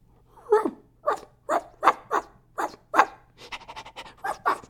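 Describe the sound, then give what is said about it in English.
A man's voice imitates a dog, giving about seven loud, evenly spaced barks, then breaking into a quicker run of rapid, panting-style yaps. “Bow, wow, wow, and woof, woof, woof, and this is how I talk. Acting like a dog”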